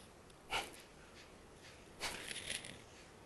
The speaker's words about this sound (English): Fire breath, Kapalbhati, start.